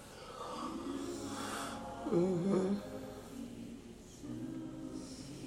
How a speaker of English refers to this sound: Oh, I think that was the yawn that woke me up.